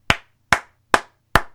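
Four sharp hand claps at a steady, slightly slow rhythm, close and crisp, each one ringing briefly before the next. No voices, just the claps alone.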